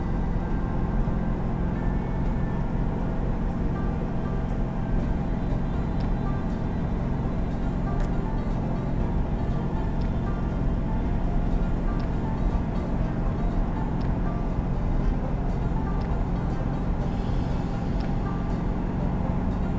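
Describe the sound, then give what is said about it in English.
A car cruising at highway speed on an interstate, its steady low engine and tire rumble continuous and unchanging throughout, with no talking. “I get on the interstate and there's a car behind me now.”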